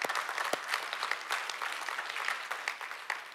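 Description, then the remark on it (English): A church audience applauds for Jesus during a sermon, many hands clapping steadily in a dense, crackling wash with a few sharper individual claps standing out, sustained at an even level throughout. “Yeah, you can clap for Jesus.”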